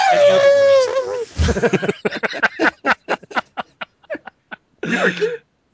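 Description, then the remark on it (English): An elephant trumpet sound effect: a loud, brassy blare with a falling pitch, then a string of short, rapid honking bursts that taper off, ending in one last brief squeal. “it's an elephant.”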